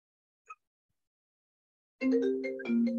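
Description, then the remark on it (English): A brief faint chime, then after a pause a loud melodic ringtone begins on a phone being called, its tones stepping through a short tune with rich harmonics, continuous to the end. “has a very auspicious a phone ring on his phone”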